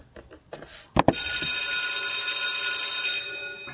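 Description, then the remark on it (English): A school bell rings steadily for about two seconds after a couple of sharp clacks, a loud, bright metallic clanging with dense high ringing tones that stops abruptly. “School is in. Hear the bell.”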